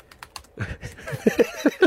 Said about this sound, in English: Typing there. He's typing with two fingers, by the way. That's how you type, isn't it?